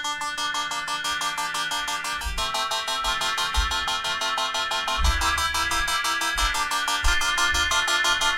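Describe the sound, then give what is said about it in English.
The Universal Audio Opal morphing synthesizer plays a steady, rapid sequence of bright, buzzy tones rich in harmonics, with pulsing low notes thumping underneath at a constant loudness and no voices. “But that is the morphing synthesizer Opal by Universal Audio”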